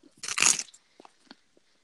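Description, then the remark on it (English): A loud, crisp crunch as someone bites into a Belgian waffle, followed by a few faint, scattered chewing sounds. No one speaks. “Nah, this is a Belgian waffle.”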